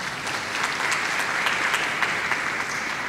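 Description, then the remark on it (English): A dense, steady burst of audience applause for the women present at a Women's Day event, many hands clapping at once in a continuous bright wash that holds at an even loudness throughout, with no voices standing out. “Happy Women's Day, and a huge round of applause is due to all the women who are here right in this room.”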